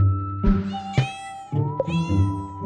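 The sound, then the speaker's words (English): A playful kitten, about a year old, meows twice in quick succession in a flat, each cry long, wavering and high-pitched, fairly loud with no talking. “And these two kittens, of course, they're in the flat and they're very playful.”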